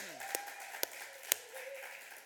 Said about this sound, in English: And I believe it's your 40th anniversary today. Yeah. Clap, round of applause.